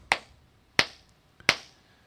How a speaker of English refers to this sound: That was the slowest fucking clap ever. Hey, it works.